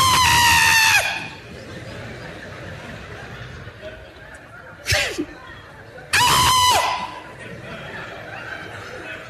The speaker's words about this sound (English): She screamed.